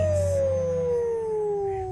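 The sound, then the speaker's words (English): A single long, loud wolf howl, a sustained tone that slowly slides downward in pitch over about two seconds, with a low rumbling background and no speech. “The Wolf.”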